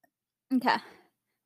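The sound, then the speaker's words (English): A single short burp rises abruptly and fades out within about half a second, heard alone against silence. “If you're, like, disgusted by me burping, I'm so sorry.”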